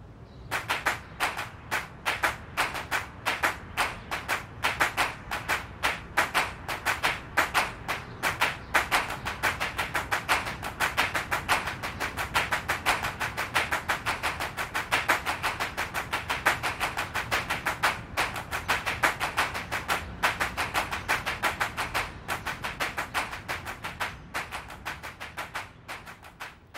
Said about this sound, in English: And this is indeed something we can hear in Steve Reich's music. And I think one of the clearest pieces that can serve as an example is his famous clapping music.